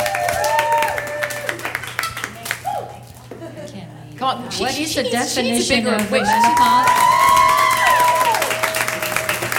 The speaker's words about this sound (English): Bigger applause there.